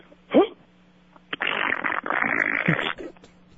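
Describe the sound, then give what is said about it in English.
A caller from Orlando's mouth-made fart imitation over a phone line: a short vocal blurt, then a long, loud, sputtering raspberry noise lasting about two seconds, band-limited and tinny. “You're not believing the farts, are you?”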